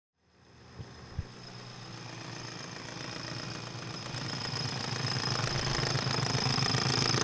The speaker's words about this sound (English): On March 11, 1889, Joseph Daniel Bell and his crew drilled into a rock formation in South Waco and sent a geyser of hot water spewing into the clear blue Central Texas sky.